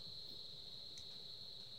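A continuous high-pitched drone of cicadas hums steadily in the background, faint and unbroken, with a low rumble of ambient noise underneath and no one speaking.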